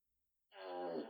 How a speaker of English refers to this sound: You know Alexa can fart? Alexa, make fart noises.